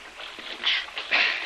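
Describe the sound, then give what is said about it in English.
Water sloshes and splashes in two surges, a hissy rush as a person climbs into a small rowboat while others try to hold it steady, with no voices. “you get in the boat first. We'll try to hold it steady.”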